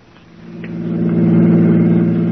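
A car engine drones with a steady low hum, growing louder over the first second and then holding strong as a police squad's car drives to the Taylor Avenue car station and pulls up. No voices.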